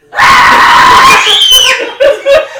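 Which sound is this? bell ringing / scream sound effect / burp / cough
scream sound effect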